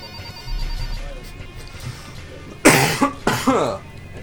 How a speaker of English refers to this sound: Huh. Well, oh, that cough means that we're calling it a day. That's the 20-point cough.